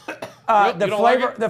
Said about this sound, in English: It's making me cough.